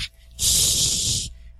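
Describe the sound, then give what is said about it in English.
A person makes a sharp, sustained hissing sound for about a second, imitating an angry vampire or snarling cat, loud, with brief breathy hiss fragments before and after. “That's the vampire sound. Or a cat sound. They sound like really pissed off cats for some reason.”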